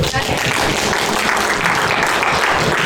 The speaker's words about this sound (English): Jigalong's got a church. Yeah, let's clap.